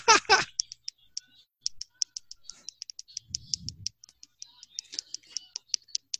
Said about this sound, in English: Is somebody drumming along on their keyboard? H? Are you playing video games? And that's the drumming sound that we hear?